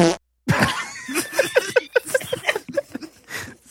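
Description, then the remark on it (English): A long, sputtering fart sound effect, a brief blip, a short pause, then a rapid string of rhythmic, bubbly pops running for about three seconds, loud. “Actually, do the fart”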